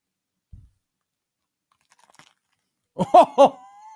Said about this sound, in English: Time to eat my nice, crunchy, juicy. Can you take a bite in the mic? Can you take a bite right next to the mic?